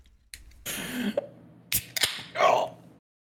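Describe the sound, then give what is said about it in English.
Someone slurps a drink in a big room in a few airy, hissing pulls broken by short sharp clicks, moderately loud and echoing, with no talking over it. “Almost talked over the slurp.”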